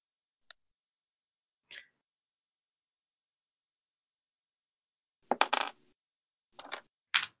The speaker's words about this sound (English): I rolled a 6 on my recovery dice.